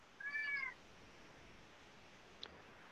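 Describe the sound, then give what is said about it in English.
A single short meow from a cat named Marco Kitty rises near the start, clear, followed by quiet background and a faint brief click later. No one speaks. “Marco Kitty.”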